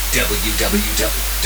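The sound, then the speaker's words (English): A wideband test signal: steady, very deep 20 and 50 hertz tones drone continuously beneath a bright wash of white-noise hiss, while a voice talks over the top throughout. “Wideband test. 20 and 50 hertz plus white noise.”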